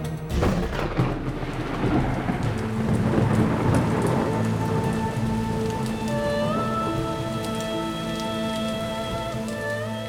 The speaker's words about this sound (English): I watched as Yosef and Miriam walked through rain and sleet and snow. The winters are cold and wet in the highlands of Galilee, and the nights are freezing.